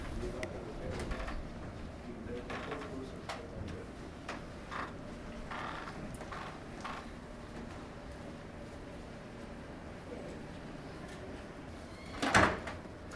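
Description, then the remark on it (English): A creaky door at the pointed end of a ship creaks and knocks amid a low, rumbling background, with scattered soft clunks before a sharp, loud creak near the end as it swings and shuts. “We have escaped the creaky door.”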